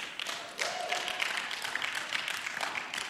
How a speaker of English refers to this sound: You can give my dad a hand clap, right? He's engaged, man.